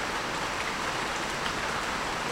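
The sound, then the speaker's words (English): Heavy rain pours down steadily on a wooden building, a dense, even hiss of drops drumming on the roof with no break and no voices. “So, it's starting to rain pretty hard. I'm in a wood building, so I'm going to, hopefully you don't hear that.”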